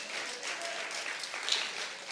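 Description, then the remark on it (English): A church audience applauds steadily, a dense wash of many hands clapping at once with an even, sustained loudness and no voices rising above it. “I mean, I guess we have to clap on that.”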